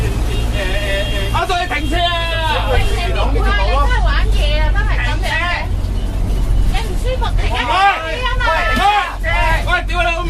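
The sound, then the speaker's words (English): A bus engine rumbles steadily in the background while many passengers chatter and shout over one another, the lively crowd noise continuing loudly throughout the ride. “I'd be on this bus tripping.”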